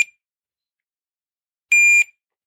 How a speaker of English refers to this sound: I'm going to hit the button on the timer. There's the first beep. There's the second beep. You hear that? That was a 2 second space of time.